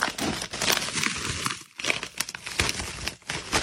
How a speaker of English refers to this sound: And by the way, that is not the owner opening up the packages, the monkey. The monkey gets after it like a five-year-old on Christmas morning, just ripping in to the packages.